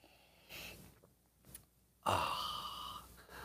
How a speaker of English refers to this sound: It's called coffee. And the simultaneous sip. It happens now. Go.